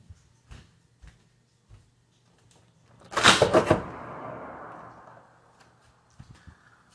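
door being opened

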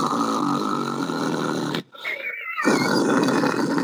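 snoring

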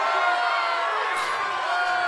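crowd booing

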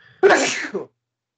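sneeze

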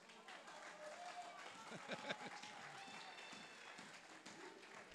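scattered applause

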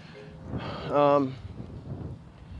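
loud motorcycle passing by

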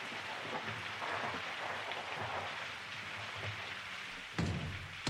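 rain falling

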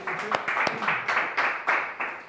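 audience applause

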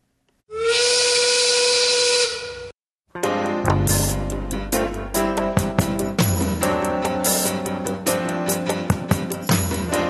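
steam whistle blowing

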